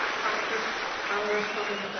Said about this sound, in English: Everybody please just give her another round of applause.